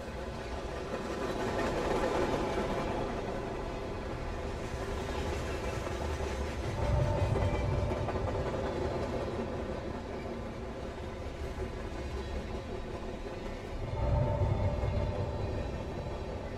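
A train rolls steadily along the rails in a continuous rumble, with heavier low clunks swelling up roughly every seven seconds; no one speaks.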